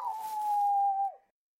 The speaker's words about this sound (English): dog ran ahead, disappeared from view, and began howling in pain.